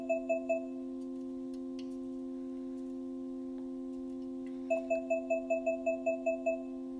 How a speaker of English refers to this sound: Alexa, what am I holding? Let's see. I'm rotating the can. When it makes that beeping... I'm not sure about that.